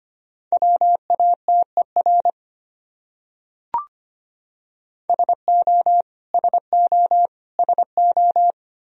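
Morse code sent as a steady mid-pitched tone at about 25 words per minute, spelling out common English words from a list of the top 100 words, in quick bursts of short and long beeps. A single click falls in the pause between two groups, and no one speaks.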